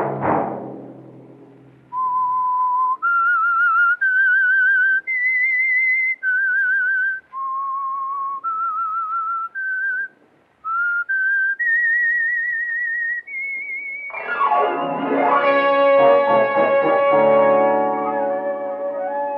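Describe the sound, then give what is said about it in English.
The theme tune of the radio show The Whistler is whistled as a slow melody of sustained, wavering high notes with brief pauses, then gives way to a swelling burst of orchestral music in the last few seconds. “Next Monday at 9 o'clock, the Whistler will bring you another strange tale.”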